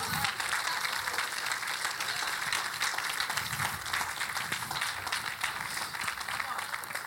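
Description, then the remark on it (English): A large audience claps steadily for several seconds, a dense, continuous wash of applause with no breaks, with faint voices mixed into the crowd noise. “Come on, clap.”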